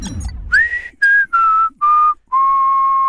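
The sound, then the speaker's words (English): A person whistles a short tune of five clear notes as the intro to the show Healthcare in America, each note held steady with brief gaps between, the last note sustained longest. The whistle is loud, with no talking. “Due to the government shutdown, we have no music. So that whistling can only mean one thing.”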